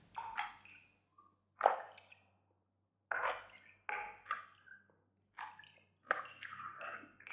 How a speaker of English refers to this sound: Our feet are sucked into a liquid we cannot identify. Every step we take, our ankles feel more the warmth of this sticky river.